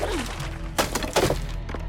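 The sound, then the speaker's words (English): A tomahawk with a rope attached, hurled by Naru as she sinks in mud, strikes tree branches and topples backwards with two sharp, woody thunks and a brief crackle of breaking twigs, heard over a steady low rumbling background. “It hits the branches and topples backwards.”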